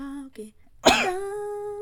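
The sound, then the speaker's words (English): A single sharp cough bursts out, preceded by brief voiced sounds and trailing into a sustained vocal tone. No words are spoken. “I love that my cough was in there.”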